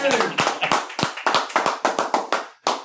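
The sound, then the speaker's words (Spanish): A small group applauds the evening's guest on a show, dense overlapping claps keeping up a steady, lively rhythm for a few seconds, with a brief dip near the end before clapping resumes. “Pero dale un aplauso a Lulo.”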